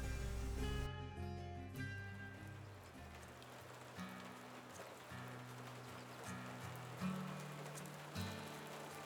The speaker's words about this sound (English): As the rain continues to pour down, you guys make your way and clear the trees that have fallen to open up the trade path.